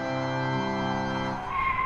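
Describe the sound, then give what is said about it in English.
Princess Halo's electric rocket bike brakes hard with a loud, sustained tire skid, a shrill screech that holds for nearly two seconds and shifts pitch as it ends, with no voices. “Princess Halo puts the brakes on her electric rocket bike and turns to face the guard who's been chasing her.”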